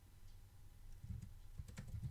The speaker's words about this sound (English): I see you typing.